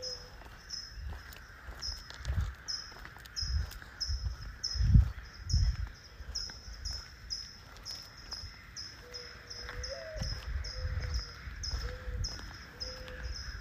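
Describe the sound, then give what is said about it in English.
Early morning birds chirp outdoors at 5:30 in the morning in a steady, repeating high-pitched pattern, while a dove coos softly in the background toward the end, with faint low rumbles and no talking. “to hear the birds that I hear right now. It's 5:30 in the morning. Listen to this.”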